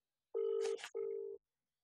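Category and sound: signal or alarm, phone call ringing out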